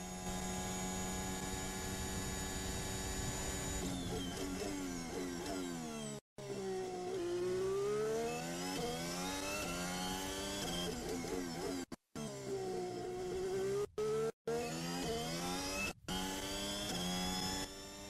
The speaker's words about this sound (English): That Renault engine sounds so weird. Yeah, it really does, eh?